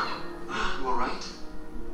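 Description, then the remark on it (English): A harsh, warbling bird squawk from a video being watched rises and falls over about a second, sounding compressed, as if played through speakers, with a faint background murmur. “He turned her into a bird!”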